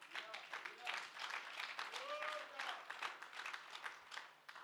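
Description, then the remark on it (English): An audience claps steadily for several seconds, a dense, crackling patter of many hands, with a few voices calling out over it. “Thank you for that clapping.”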